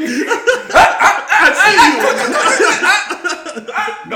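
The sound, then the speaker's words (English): A dog barks and yips repeatedly, loud and busy across a few seconds, with what sounds like chuckling mixed into the noise. “I'm gonna get my fucking arm bit off. I don't do no set movements around dogs, bro.”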